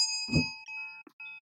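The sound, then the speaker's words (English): A bright bell rings out with a sharp strike, its clear tones ringing on briefly, then a second quicker chime follows before fading into quiet, marking the end of a five-minute segment. “And that's my five. Where's my bell?”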